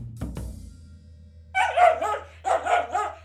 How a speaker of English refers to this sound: That's weird. Here, Marlo. What's wrong? Get that dog away from me!